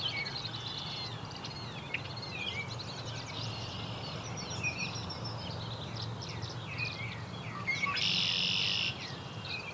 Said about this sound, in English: There goes the killdeer. That's the killdeer call that it's named after.